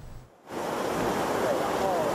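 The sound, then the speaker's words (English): Heavy surf whipped up by fierce typhoon winds roars in a dense, continuous wash, crashing across breakwaters toward Fugang fishing port; wind buffets the microphone, and after a brief lull the crashing water swells loud, filling the background without pause. “Ocean waves are whipped up high by fierce winds. They crash across the breakwaters, rushing toward Fugang fishing port.”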